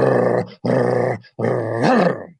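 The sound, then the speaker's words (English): A person's voice imitates a lion's growl: three loud, rough, rumbling bursts, with short pauses between them and the last one rising and straining before it fades. “And when a lion growls at you, it sounds like someone started a dirt bike up in the brush ahead of you.”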